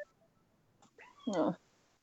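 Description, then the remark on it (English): A female cat lets out a loud, drawn-out meow, preceded by a shorter chirping call, with no talking in between. “Yeah, she's always pretty vocal anyway.”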